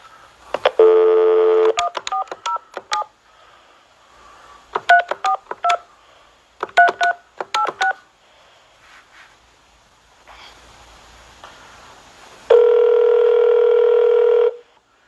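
Touch-tone telephone dialing to call Atlanta Braves broadcaster Chip Carey: a brief buzzing tone, then quick clusters of beeping keypad tones, a stretch of faint line hiss, and a loud steady ringing tone at the end. No one speaks.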